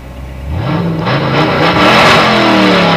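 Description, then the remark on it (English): A car engine revs up loudly, its pitch climbing steadily over a few seconds with a throaty, rising roar and no voices, at the start of a song about a car. “Songs about cars, man.”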